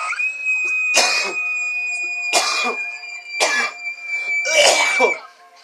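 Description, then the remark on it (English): Four short, harsh screaming bursts come through a distorted phone line, evenly spaced and loud, with a faint steady tone humming underneath throughout. “Scream. I love it. That's a good scream.”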